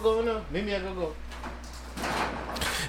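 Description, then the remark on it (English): Voices are heard briefly at the start, then a door is lifted open with a rough, rolling scrape that builds over the last second, moderately loud. “Can one of y'all lift the door up real quick?”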